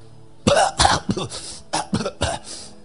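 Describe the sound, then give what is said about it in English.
A person coughs in a quick, hacking run of about half a dozen harsh bursts, fairly loud, with no talking around them. “I can give you my key as a young man of God to minister, and you start coughing.”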